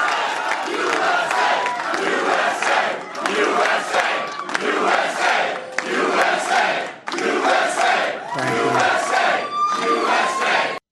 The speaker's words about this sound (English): And here's a little bit of the crowd chanting USA to President Trump.